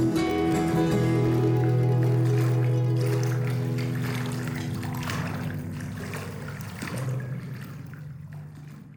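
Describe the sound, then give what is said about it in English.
Water sloshing and lapping in a steady, irregular wash, with sustained musical tones that gradually fade away, leaving the watery sound more exposed toward the end. “At the end, you hear that water sloshing.”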